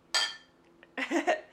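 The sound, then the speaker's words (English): Glasses clink together in a toast: one bright, ringing clink, then after a brief pause a second flurry of clinks, fairly loud. “Cheers.”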